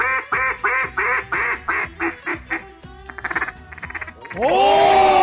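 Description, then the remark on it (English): A duck call quacks loudly in a steady series of nasal honks, then speeds up into a rapid chattering run before breaking into a drawn-out, wavering tone at the end. “Mason Rudolph was benched for Devlin Hodges, a man most famous for duck calls.”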